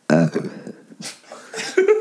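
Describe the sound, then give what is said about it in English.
A loud, low, throaty belch rumbles out at the start, followed by a few scattered breathy and throaty noises and another short voiced burst near the end. “There's no belching on the show, right?”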